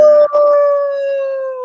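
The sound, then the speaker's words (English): A person's voice imitates a wolf howl: a single loud, sustained note that holds steady, then slowly slides downward over a second and a half, with a brief break near the start. “So lone wolf.”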